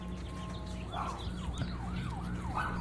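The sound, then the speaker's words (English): A siren wails in quick rising and falling sweeps over a steady low engine-like hum, starting after a brief moment of just the hum; no one speaks. “Siren isn't for me, is it?”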